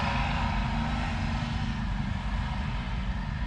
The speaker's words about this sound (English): Oh, there's a car going by. There are motorcycles. There's a bunch of them. 1, 2, 3, 4, 6, 7, 8 motorcycles.